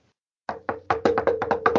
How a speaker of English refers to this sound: Unless. That's me knocking on wood.